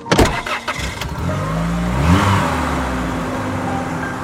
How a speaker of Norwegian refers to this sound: Og han kaster seg I bilen og kjører mot fjelltunvegen.